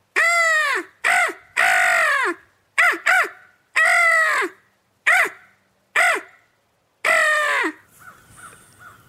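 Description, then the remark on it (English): A person imitates crow calls with their voice to call crows in: a series of about nine loud, harsh caws in uneven bursts, some doubled, followed by faint, scattered calls in the background. “Try to call those crows in.”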